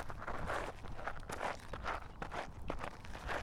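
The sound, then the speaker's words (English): Footsteps imitated by a person tapping or stomping to pretend to walk, a steady run of fairly loud thuds in an even walking rhythm, with no talking over them. “He's walking. Pretending footsteps, everyone, while I'm he walking.”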